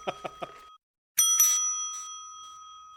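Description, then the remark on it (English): A bell rings: three quick, light dings, a brief pause, then two loud bright strikes whose high metallic tone rings on and slowly fades. “For the love of Jane Russell's big fat horse's ass on toast, stop ringing that goddamn bell.”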